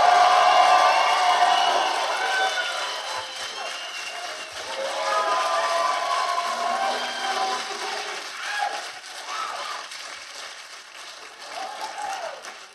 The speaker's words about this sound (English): Please give a warm round of applause